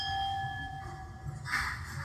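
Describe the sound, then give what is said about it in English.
Wine glasses clink together in a toast, leaving a bright, sustained ringing tone, followed by a second, softer clatter of glass over a low background rumble. “We should have a toast. Cheers.”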